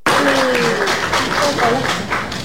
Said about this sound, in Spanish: Solo quiero mencionar, gracias, los aplausos, es porque ya hubo llamado oficial a la segunda vuelta de elecciones.